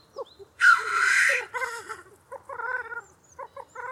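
A male black grouse gives a loud, harsh hissing whoosh, then breaks into its bubbling song: repeated low, burbling, cooing phrases that roll on steadily with short gaps, no voices present.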